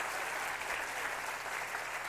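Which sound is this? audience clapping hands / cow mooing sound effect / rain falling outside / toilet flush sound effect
audience clapping hands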